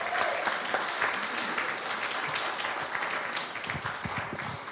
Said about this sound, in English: Can we give the Lord a hand clap of praise in here? Come on.